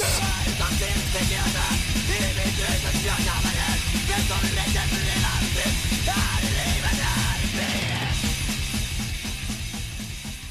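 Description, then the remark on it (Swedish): A hardcore crust punk song blasts at full volume, with fast pounding drums, dense distorted guitars and hoarse shouted vocals, staying relentless throughout before easing slightly at the very end. “Men bandets musik, de brukar beskrivas som hardcore, crust eller kängpunk”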